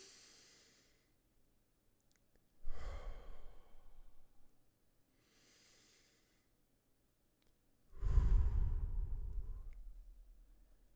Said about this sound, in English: And when we trace up your finger, literally, we're going to breathe in and then out. In and out. If you have thoughts showing up, let them show up. I have some thoughts showing right up. Right now, we're breathing.